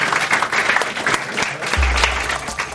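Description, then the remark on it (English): An audience applauds the participants after a lightning round: a steady, dense wash of clapping hands at moderate volume that fills the whole moment, with a low rumble joining in partway through. “Let's give them a round of applause for that lightning round.”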